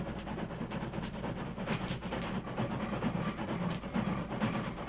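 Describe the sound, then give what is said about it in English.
A train rumbles steadily with hissing steam and faint rhythmic clatter as it approaches and slows down; no one speaks. “Keep out of sight, you fellas, till the train stops.”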